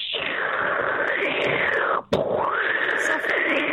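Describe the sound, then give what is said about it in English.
A voice imitates rain with a loud, harsh, continuous hissing shush that wavers in tone, broken by one brief pause midway before resuming just as strongly. “Can you do the sound of rain”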